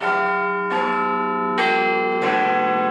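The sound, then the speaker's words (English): Big Ben, the bell in Parliament's clock tower, strikes four times in quick, slightly uneven succession, each loud, resonant clang layering over the long ringing hum of the one before, with no voices present. “How are you coping now that Big Ben is no longer chiming?”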